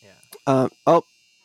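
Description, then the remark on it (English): Two short, loud buzzer blasts from a clothes dryer, a harsh harmonic drone, the second one a bit shorter, with brief faint murmuring just before them. “Did you not hear that the big buzzer go off?”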